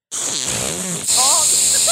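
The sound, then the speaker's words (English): A voice imitates a wet fart, a loud, blubbery sputter lasting about two seconds that changes tone briefly midway through. “There we go. Mine sounded wet.”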